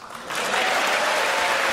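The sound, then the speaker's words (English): A crowd breaks into applause, the clapping swelling after a brief softer start into a dense, steady roar of many hands that stays loud to the end. “Applause line, everybody.”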